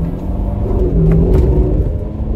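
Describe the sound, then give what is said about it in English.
A powerful Ferrari sports car engine revs loudly, a deep steady rumble with rising whine, continuous for a couple of seconds with no voices. “Oh my gosh, this car is so loud.”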